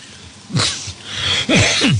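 A short fit of coughing from a talk show host: three harsh, breathy bursts, one and then a quick pair, each with a rough voiced edge that drops in pitch. No talking.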